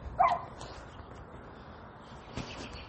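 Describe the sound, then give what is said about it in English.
A stray dog gives a single short bark near the start over a steady outdoor background hum, followed by a faint thump later on. No one speaks. “Okay, I just saw a dog. It looks stray.”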